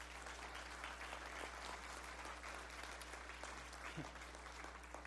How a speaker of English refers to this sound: You can keep applauding when you realize that he's been working with me the whole time.